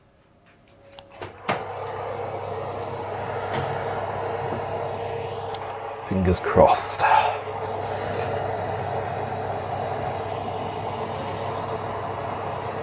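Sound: oven door opening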